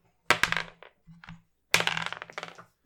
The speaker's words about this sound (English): So let's grab the dice and roll and talk about this one.